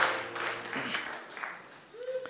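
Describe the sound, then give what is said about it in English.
An audience claps for the Lord as they take their seats, a dense, steady wash of hand claps for a couple of seconds, while a sustained low musical tone hums underneath and a brief higher tone rises near the end. “Why don't you clap for the Lord as you take your seats?”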